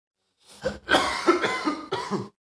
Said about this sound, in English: Whoa. You good, nigga? I just had a little cough attack.